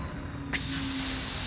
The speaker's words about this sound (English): The exit bay door opened with a hiss.